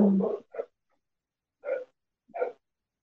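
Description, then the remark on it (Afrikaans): A dog barks several times in short, spaced bursts, with pauses of silence between the barks and no talking over them. “Sorry, there was a honde daar achter.”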